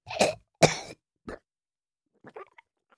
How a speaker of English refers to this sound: And just blood spatting against your chin. And then one of these coughs.